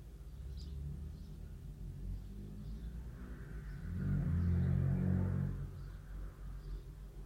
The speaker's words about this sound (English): That's a noisy car. Every day at 6. Blimey.